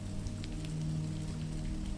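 Steady rain patters onto a surface, a soft, continuous wash of fine drops with a low, even rumble beneath it and no voices.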